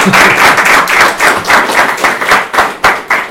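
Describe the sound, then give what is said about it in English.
An audience applauds three panelists before a panel discussion on the Arusha Declaration, dense overlapping claps forming a continuous loud wash that rises and falls slightly over a few seconds, with no one speaking. “I'd like to give them a round of applause first before we start.”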